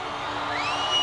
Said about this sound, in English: Joyous greeting from the crowd.